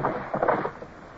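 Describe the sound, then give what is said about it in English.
A brief rush of water and muffled wooden knocking as a rowboat on a narrowing, faster-flowing river pulls in to the bank and its sculls are shipped, fading quickly with no voices. “Now, pull over to the bank there”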